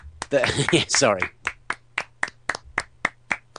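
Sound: hands clapping in applause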